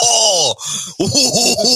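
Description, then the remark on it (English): Someone clears their throat in a loud, voiced rumble: one long, groaning sweep, a short pause, then a few quick throaty bursts, with no talking. “You clearing your throat?”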